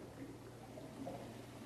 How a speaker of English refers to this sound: Specialty of the house, le potage dangereux. The dangerous soup. Taste. The bubbling.